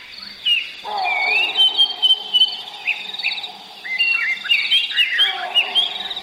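A busy dawn chorus in Zimbabwe, Africa: many birds chirping and whistling in overlapping high, rapid phrases, with a steady buzzing hum of insects underneath throughout and an occasional monkey in the background.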